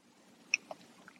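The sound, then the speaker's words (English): A quiet drink of morning coffee from a coffee cup: a light, high clink, then a single soft, low gulp. Faint mouth noises follow over a low background hum, with no talking. “If you hear a little gulping, it's because I'm drinking my morning bitch's coffee in my coffee cup.”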